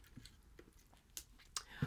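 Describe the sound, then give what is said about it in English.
Soft slurping sips of tea from a cup, a few quick mouth sounds spread over a couple of seconds, otherwise quiet, with no talking. “Give us a quick fact check while I sip this tea.”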